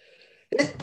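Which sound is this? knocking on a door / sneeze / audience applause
sneeze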